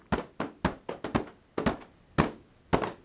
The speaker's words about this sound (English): And bringing the hands to the front, right at the hips here, a little slap.